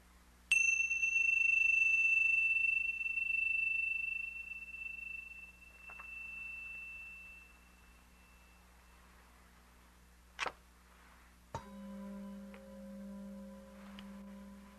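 A bright meditation bell is struck once and rings out, slowly fading over several seconds; after a quiet pause with faint clicks, a deeper bell sounds and hums steadily, clear.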